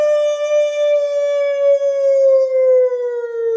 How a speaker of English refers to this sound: That's the tornado drill. That's just the local tornado drill sirens. Those happen randomly throughout the day at all times.